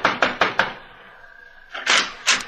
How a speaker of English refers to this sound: Knock on the door, Mr. Val, because you see I can't.